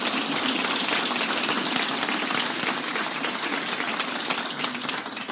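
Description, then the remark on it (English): Sustained audience applause for a doctor being introduced as a guest, a dense, steady wash of many hands clapping at an even loudness for several seconds, with no voices heard over it. “Ladies and gentlemen, a round of applause, please”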